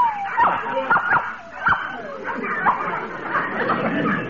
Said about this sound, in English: That's the puppy there, the little brown and white one.